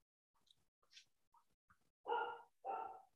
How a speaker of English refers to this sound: my dog is losing his flipping mind right now. He's barking his brains out.